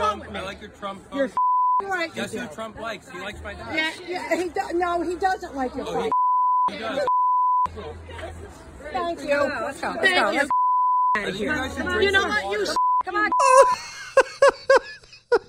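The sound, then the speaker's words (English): A steady, high censorship bleep cuts in again and again over a person's rapid, loud talking in a recorded argument about wearing a mask, with several tones of varying length, some stretching over a second, masking stretches of speech. “The whole thing is one long beep.”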